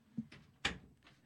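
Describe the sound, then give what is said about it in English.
A door being handled as a dog comes in: a soft low thud, then a sharper knocking rattle, followed by faint shuffling. Quiet overall, with no talking. “My dog's coming in the door.”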